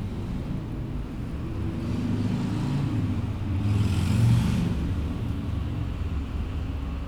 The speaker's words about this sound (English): Maybe if we were on a higher floor, we wouldn't hear the traffic. Then it would be good.